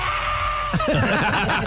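After a moment of steady background hum, a man lets out a strained, wavering yell while straining in the gym, his voice rising and falling with effort, loud.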